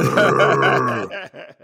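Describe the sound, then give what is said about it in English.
A man's voice imitates a big V8 Mustang engine breathing while it runs: a long, low, rumbling groan that tapers into a few shorter throaty pulses, fairly loud. “that's my car breathing”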